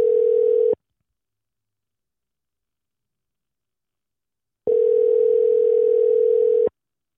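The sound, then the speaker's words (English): A steady, buzzy telephone dial tone sounds briefly, stops for a few seconds of silence, then returns for about two seconds. It is clear, with no voices, after a phone call was cut off by accidentally pressing the button on the phone. “I pressed the button on my phone and it cut off.”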